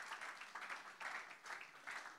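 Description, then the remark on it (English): A crowd claps steadily, a dense crackle of many hands that swells in regular pulses about twice a second, with no voices over it. “And it is clapping for God who made it possible.”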